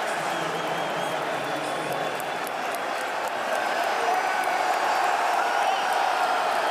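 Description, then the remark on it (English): A large basketball arena crowd of Raptors fans cheers in a steady, dense roar, with scattered claps and whoops popping through the sustained noise throughout, as an opposing player goes down injured. “They don't like to hear the fans cheering.”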